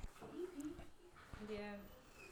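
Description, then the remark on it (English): A puppy whimpers and yips indoors, a few short, rising high whines and squeaky cries in quick succession over busy background noise. “So as my wife takes my puppy out, because he's going bananas in here.”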